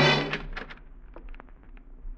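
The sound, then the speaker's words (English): A door to a room is unlocked with a key and opened by someone coming in: a heavy clunk, then a scattered series of small sharp clicks and rattles, like a key turning and a latch giving way, with no voices. “Someone who moves quietly and has a key. You want to run, but the door's the only way, and then...”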